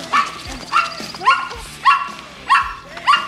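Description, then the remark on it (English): A small dog barks repeatedly in sharp, high-pitched yaps, about six in a steady rhythm, fairly loud with no talking over it. “That piece of scum barking rat of yours is just taking his last stomp on my lawn.”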